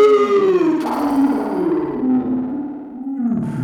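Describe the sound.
Several voices imitate a time machine with a steady, warbling drone that slides gradually downward in pitch, sustained loudly for nearly four seconds with a buzzy, effect-like texture.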